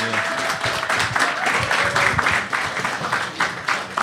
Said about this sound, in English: Please put your hands together for the Mr. Ian Fidance, everybody. Clap.